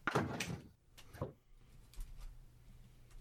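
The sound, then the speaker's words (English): Heavy banging on a door: a loud cluster of thuds at the start, then a single bang about a second later, followed by quieter rattling and low background rumble. No one speaks. “I don't know, somebody banging on the door.”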